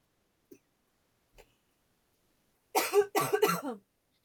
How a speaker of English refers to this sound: coughing.